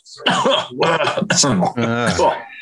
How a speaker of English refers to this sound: It sounds like a bit of a sickly cough you got there